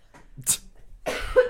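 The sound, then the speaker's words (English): A fairly loud cough: a short burst, a brief pause, then a harsher, longer cough with a rough, wheezy tail, and no talking over it. “I'm going to cough.”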